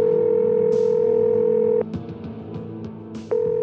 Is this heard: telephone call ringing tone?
yes